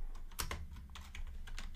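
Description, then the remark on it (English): Rapid, irregular clicking of keys on a computer keyboard as someone types out their pick for the winner of an IndyCar race, a quick run of taps with no talking, recorded at fairly low volume. “Let me type out my pick.”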